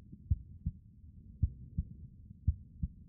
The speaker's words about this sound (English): The room was beyond silent. A depth of quiet completely muffled any sound from the other room or the outside world. Maisie could hear her heartbeat.